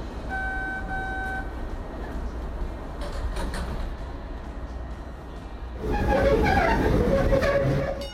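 Steady low rumble of a subway train underway in Boston, bound for Asmont, with a thin electric whine early on; near the end the racket grows louder and busier, with an indistinct voice mixed in.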